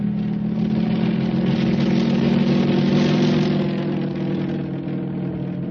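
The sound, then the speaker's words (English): A steady, loud airplane engine drones without a break, its deep low hum and rough buzzing overtones holding constant throughout, with no voices present. “In the air.”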